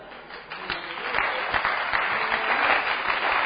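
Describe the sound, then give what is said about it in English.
An audience claps their hands for Jesus, the applause swelling after a quieter start into a dense, steady wash of many overlapping claps that holds at a fairly loud level, with no one speaking. “Are you clapping your hand for Jesus?”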